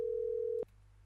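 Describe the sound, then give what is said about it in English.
A steady, clear telephone ringing tone on an unanswered phone call holds at one pitch for just over half a second, then cuts off abruptly with a faint click, leaving quiet line hiss. No one speaks. “Please leave your message.”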